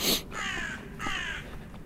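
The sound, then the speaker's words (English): A crow caws twice in harsh, drawn-out calls, loud, in an autumn forest in the evening, with a faint rustling outdoor background and no talking. “And this bird tells me that I'm right.”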